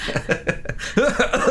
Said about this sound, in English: So much coughing today.